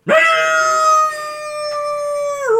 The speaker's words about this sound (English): All the howl. Yeah. Yeah. That werewolf did howl, didn't he?